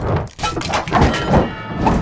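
A kick slams into a metal torture device, giving a loud thud followed by a dense, noisy clatter of rattling and crashing that carries on throughout as its pendulum blade is knocked off its track, with a few heavier knocks along the way.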